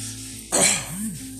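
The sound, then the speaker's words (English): One harsh cough bursts out, trailing into a short raspy throat sound before fading into quiet background noise. “That cough, baby, felt like I just went upstairs in the highness.”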